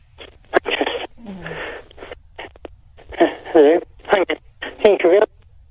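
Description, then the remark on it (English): A voice over a thin, band-limited phone line keeps breaking up, with short bursts of garbled speech chopped apart by abrupt dropouts and gaps of near silence. “now your phone's cutting in and out, mate.”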